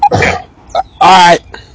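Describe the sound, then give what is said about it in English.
Someone coughs: a rough burst, a brief catch, then a longer, throaty, voiced cough, with a faint trailing hack at the end. Fairly loud, with no talking. “Are you coughing?”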